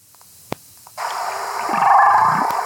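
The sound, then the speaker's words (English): A humpback whale named Twain calls in response to a playback exemplar played through an underwater speaker from a boat, recorded by hydrophone: after a short click, a loud, sustained underwater moan rises in, its pitch sweeping down then back up in a U-shaped glide beneath broad hiss. No one speaks. “the call and response between the boat and the hydrophone underwater and Twain”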